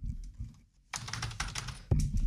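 Rapid typing on a computer keyboard, a dense run of clicky keystrokes starting abruptly after a quiet low rumble, with a louder thump near the end.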